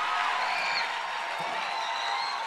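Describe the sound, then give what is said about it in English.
A crowd claps hands steadily to receive missionaries who are moving to the regions, a dense, continuous wash of applause at even loudness with faint cheering mixed in and no one speaking. “Keep clapping. Don't stop clapping your hands.”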